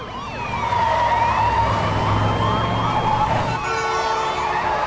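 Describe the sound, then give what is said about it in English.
Several police sirens wail and warble at once over roaring car engines, loud, a car chase passing through with overlapping sweeping tones and steady traffic rumble. “That is a very serious car chase for the practice.”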